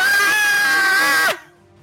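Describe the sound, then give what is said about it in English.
A single loud, sustained high-pitched scream, a character's cry on seeing a spider, holds steady for over a second, then cuts off abruptly, leaving quiet background. “Because Hap puts out a long scream.”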